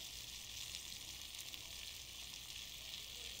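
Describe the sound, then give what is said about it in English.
Food sizzles and fries in a pan, a steady crackling hiss with fine popping that holds evenly throughout, with no voices. “I don't want to burn this thing”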